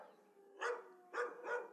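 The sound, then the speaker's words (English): Three sharp dog barks in quick succession, moderately loud, with a faint steady hum underneath and no talking; dogs dashing out through an open security-fence gate, barking and snapping at the wheels. “The gate to the security fence was open and the dogs dashed out, barking and snapping at the wheels.”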